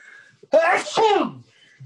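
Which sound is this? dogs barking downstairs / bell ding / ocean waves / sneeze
sneeze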